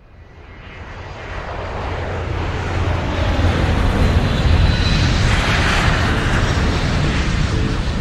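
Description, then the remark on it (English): A steady, loud jet engine roar heard inside a private jet cabin, swelling over the first couple of seconds and then holding constant with a deep low drone. “I've never flown in a private jet, I've never been to LA, and I've never gone to a listening party.”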